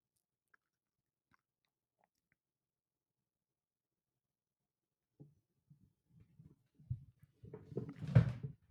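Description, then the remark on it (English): After a long quiet stretch, a chair creaks and knocks in irregular bursts, growing busier and louder toward the end with one sharp, strained creak. “Oh, those are my chair. God, I got to get a new table.”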